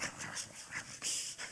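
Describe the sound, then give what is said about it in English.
A voice mimics snarling dogs with a quick run of harsh, breathy, panting bursts, fairly loud, with no words spoken. “Here come the dogs, snarling.”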